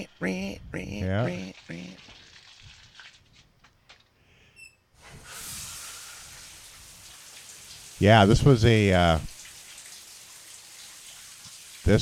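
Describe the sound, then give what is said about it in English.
A steady hiss of shower water from a film's famous shower scene, as a woman gets into the shower, starts a few seconds in and keeps running, fairly loud and even, while a person speaks briefly at the start and again partway through. “It's the old famous shower scene. Look at the legs getting in the shower.”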